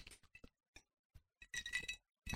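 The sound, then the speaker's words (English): Several bright glass clinks ring out in quick, uneven succession, then a cluster of overlapping chimes as glasses tap together in a toast, with a final clink after a short pause. “Cheers. Okay, cheers.”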